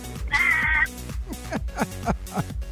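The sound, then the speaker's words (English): A parrot lets out one loud, harsh squawk lasting about half a second, clear, over rhythmic background music that keeps playing afterward. “And the parrot loves us too.”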